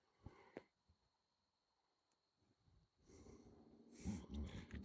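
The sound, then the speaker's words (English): A zipper scrapes and rustles against a microphone cable, starting softly and growing louder in scratchy bursts near the end, after a couple of brief earlier knocks. “My zipper keeps scraping on the cord.”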